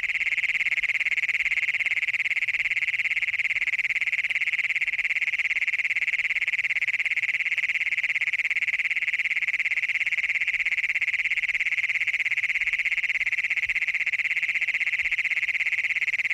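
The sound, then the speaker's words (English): An adult male frog or toad gives a continuous, steady, loud trilling advertisement call, holding a high buzzy pitch for the whole stretch with no talking, recorded near Wilcox, Colorado. “These so-called advertisement calls by adult males hoping to find a mate were recorded near Wilcox, Colorado.”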